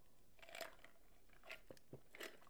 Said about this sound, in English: Sorry, I had to take a sip of vitamin water.